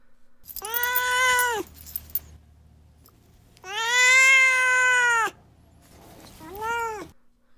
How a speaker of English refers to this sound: Now it is time for Duarte's Corner, where my cat Duarte will share his opinions about the book.